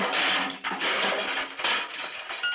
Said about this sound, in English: And that's when the paint cans I was leaning on went crashing all over the floor.